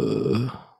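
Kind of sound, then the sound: human body sound, burp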